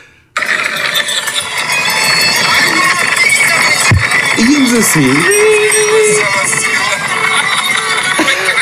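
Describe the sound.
Riding along fast in a pedal-powered, not motorized, tuk-tuk, a steady loud rush of road and street noise with chain and gear whir, voices faintly mixed in, a brief tonal whine near the middle.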